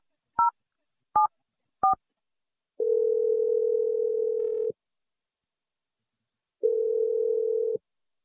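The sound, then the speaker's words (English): Three quick keypad beeps sound in succession as a phone number is dialed, followed by two long, steady ringing tones separated by a pause, clear with no voices. “I'm going to dial his number right now.”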